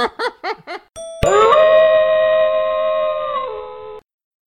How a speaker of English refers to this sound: Is that the permanent doorbell now with the wolf howl? I thought that was just for Halloween. Oh, no, yeah, dude. I just love it so much. I think it's year-round, bud.